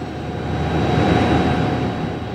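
A loud, steady airplane engine drones continuously, a dense low roar with a faint high whine running through it and no voices.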